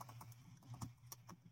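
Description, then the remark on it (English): Someone types a message on a computer keyboard, a quick, uneven run of sharp clicking keystrokes over a steady low hum. “I just heard you typing something.”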